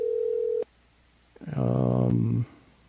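A steady telephone dial tone hums for about half a second and cuts off abruptly while a call is being placed. After a short silence, a voice speaks briefly over the line.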